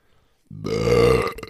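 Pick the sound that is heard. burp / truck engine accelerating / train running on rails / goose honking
burp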